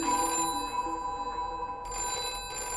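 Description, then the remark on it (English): A telephone at home rings at night with a bright electronic trill, bursts of high tones repeating in a steady pattern, clear with no talking. “is all packed and ready to go on tomorrow's train when she gets a phone call.”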